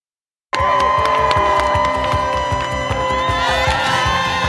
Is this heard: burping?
no